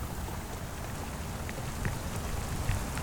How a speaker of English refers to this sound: And then, just as he was putting a few of the last brush strokes on the wall, the rain switched from a trickle to a downpour.